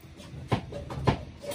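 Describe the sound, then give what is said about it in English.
A squeaky chair creaks twice, about half a second apart, each a short, strained groan with a rough, scraping edge over a low background hum. No one speaks. “Do you hear how squeaky this chair is?”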